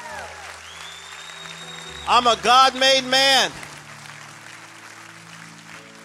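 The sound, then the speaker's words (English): An audience claps steadily in a diffuse wash of hand claps that runs the whole time, while a man shouts a short phrase in loud bursts over the top midway through. “Clap your hands and shout like you're a God made. Come on, clap. Come on, clap.”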